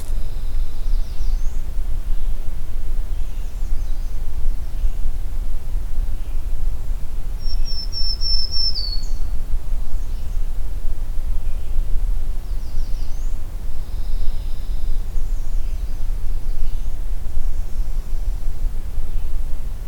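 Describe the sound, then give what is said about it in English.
A black-throated green warbler sings faintly, a few thin, high buzzy phrases scattered over steady outdoor hiss and low rumble, with one clearer phrase near the middle. “This is at a location where I've photographed and recorded black-throated green warbler, and by location I mean within about two trees distance.”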